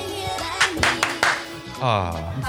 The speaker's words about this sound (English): Want to clap three times? Go ahead. There it is.